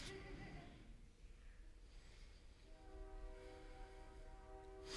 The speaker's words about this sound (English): I'll tolerate that train, Father.